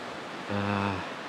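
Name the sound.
flowing stream water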